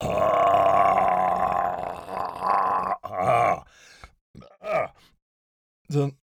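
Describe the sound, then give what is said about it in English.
A voice imitates a lion's roar with a long, loud, rumbling growl of about three seconds, followed by a few shorter grunting bursts and a brief final snarl. “The noise of a lion.”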